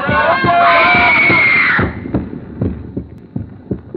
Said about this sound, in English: First, the voices echoing in my ears, the fragments of speech about a concert, are the same voices I heard in that crowd, rising again and again to the climax of a woman's scream.